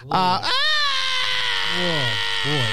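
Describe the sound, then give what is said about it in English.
Someone imitates a loud, drawn-out wail with their voice: a sustained, high-pitched cry that briefly breaks near the start, then holds steady, dips and swells upward again at the end. “That is someone who wails. Wails loudly. That was what that was.”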